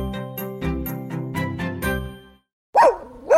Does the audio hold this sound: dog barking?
yes